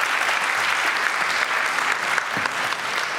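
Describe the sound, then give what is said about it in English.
A crowd claps steadily for about three seconds for a pair of life group leaders, a dense, even wash of hand claps at constant loudness with no voices standing out. “Give these guys a clap.”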